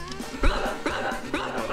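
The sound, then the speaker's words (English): A dog barks three times in an even, steady rhythm, each bark short, over a faint continuous background hum. “Your Honor, could we have the court reporter read back the dog's testimony?”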